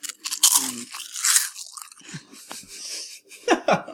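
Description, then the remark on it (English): Loud crunching of someone chewing a crisp snack, with repeated sharp bites and grinding chews in an irregular rhythm, heard alone without talking. “I'm so sorry to anyone listening to this, just hearing our crunches over and over.”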